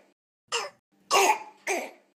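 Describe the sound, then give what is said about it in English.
Three harsh, hoarse barks of a seal from a YouTube video, in quick succession, each a short raspy burst with a gap between, the last two louder than the first. “Whip out some YouTube video of a seal barking.”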